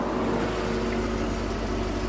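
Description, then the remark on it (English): A taxi's car engine hums steadily, a low continuous idle-like rumble with no voices, as the taxi pulls up and waits. “Oh, shit, forget he's got a car. Taxi!”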